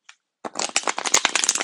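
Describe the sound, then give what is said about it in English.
A deck of cards is shuffled, a quick flurry of crisp, rapid flicking and riffling that runs for over a second after a single small tap. “And as you know, I like to shuffle the cards while I am recording.”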